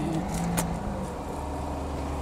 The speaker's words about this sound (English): Look, there's a car engine.